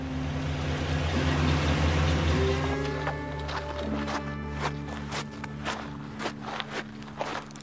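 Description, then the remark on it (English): A truck engine idles with a steady low hum, then several crunchy footsteps sound as three people step out of a Humane Borders water-service truck at a pole with a blue flag and walk around, the engine still running beneath them. “two colleagues get out of the truck.”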